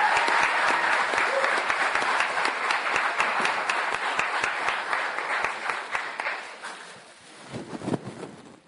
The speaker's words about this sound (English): So again, a big round of applause for Andrew Weaver representing the Greens.